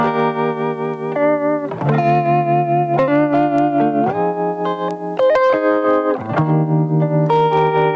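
A music track plays loudly: a sustained, effects-heavy electric guitar with distortion and chorus rings out chords that shift roughly every second, with no singing or talking over it.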